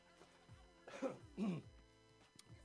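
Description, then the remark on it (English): Two rough stoner coughs, not from illness, follow each other within about half a second, harsh and throaty with a bit of a throat-clearing quality, and no talking around them. “It's not a corona cough. A stoner cough.”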